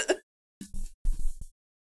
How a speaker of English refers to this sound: I had to burp, but. All right. Learn how to stealth doing it after 7 years of doing a show. You're like, you know. But the timing was terrible.